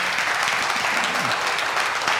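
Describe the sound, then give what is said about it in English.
A crowd applauds steadily, dense clapping spread evenly throughout, fairly loud, with no pauses or individual claps standing out. “Beautiful, and it's moving, and it deserves a clap, right?”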